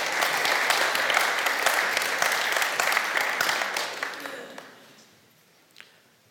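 A crowd applauds steadily, a dense patter of many hands clapping at once, then the applause thins out and fades away over the last couple of seconds.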